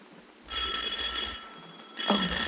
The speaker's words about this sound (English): why did you ring the bell? Didn't I give you a key?